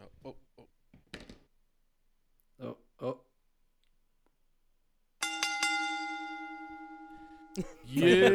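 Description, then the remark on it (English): A few soft taps and knocks, then a single bright bell strike rings out with a sustained, slowly fading tone for a couple of seconds before a voice starts talking. “A fair pish. Ring the bell.”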